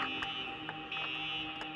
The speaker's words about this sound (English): I just walked up to customer service and the fire alarm went off.